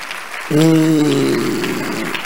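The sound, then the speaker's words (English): An audience clapping for Jesus during a preacher's address breaks into steady applause after a quiet half second. The dense clapping continues under a loud, sustained tonal voice or instrument note that holds for about a second before fading. “I say, if you are clapping for Jesus, you will remember.”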